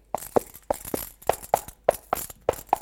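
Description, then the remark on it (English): Coconut shells clop in a steady two-beat rhythm imitating trotting horse hooves for a radio play, with a bright metallic jingle from bits of metal standing in for a bridle over each step; fairly loud, no voices. “So you've got the horse's hooves and the bridle as well.”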